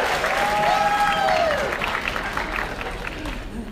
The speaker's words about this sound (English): Can we have a quick sign round of applause for our interpreters?